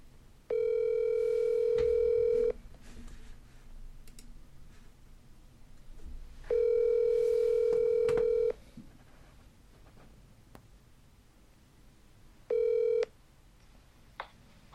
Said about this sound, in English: So let's see if we can call him. We'll get this episode going. Get on my phone. Get this set up. Let's see. He might not answer. It's Monday, March 21st. It's 7 a.m. We are in spring. Let's make this phone call.